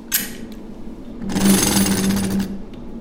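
An engine turning machine at Yard Lead, worked on pulleys and in use there since 1946, cuts an engine-turned pattern into a metal pencil: a brief rasping burst, then a longer, steady rattling grind over a low mechanical hum before it tapers off. No one speaks.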